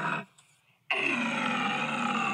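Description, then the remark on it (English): A loud, raspy lion-like roar bursts in abruptly after a brief lull and holds steady and harsh until the end, with a shorter rough snarl just before the pause. “That's more like a lion. Yeah, play that again. That's a great sound. It's a roar.”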